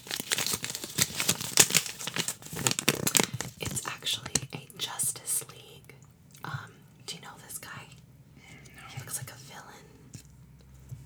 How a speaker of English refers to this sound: Let me open up my paper here. Oh!